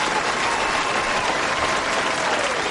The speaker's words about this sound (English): Let's do some applause for him.